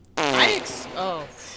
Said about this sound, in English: I am blown away by the echo fart every time.